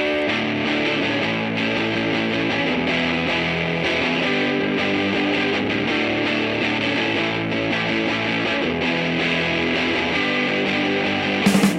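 A punk rock song plays loudly and steadily throughout, with dense, distorted guitar and a driving full-band sound, no talking over it.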